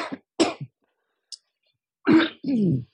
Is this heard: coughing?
yes